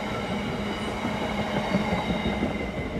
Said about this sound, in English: Big train. Bear with me. I actually really like the noise of trains, so I'm quite enjoying this.